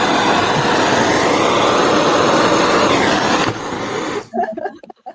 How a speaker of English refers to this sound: Sound like a fucking fighter jet. Jet plane was going over the house. I just freaked out for a second.